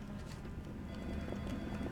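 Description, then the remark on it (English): Ambient office noise from a coffee machine, one of several selectable ambient-noise options with adjustable volume: a steady, low rumbling hum with scattered light clicks and clatters, holding an even, moderate level throughout and no voices. “Here's the coffee machine. Okay, let's listen to the coffee machine.”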